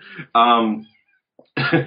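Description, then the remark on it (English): A male cat yowls loudly at the door, letting out a couple of drawn-out, insistent meows separated by a brief pause, with a short bit of sound just before the first. “My cat is just screaming at the door, so if I let him, he'll calm down.”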